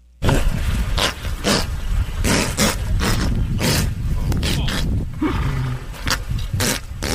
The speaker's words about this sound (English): This is a horse fart.